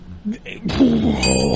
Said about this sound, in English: The fucking racism bell. I want to fucking throw it right now.